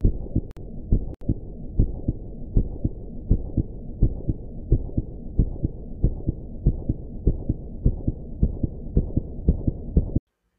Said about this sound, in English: I stepped into the box and I could feel my heart beating out of my chest.